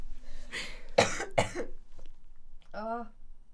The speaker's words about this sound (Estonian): okay, ma köhin. Köhi.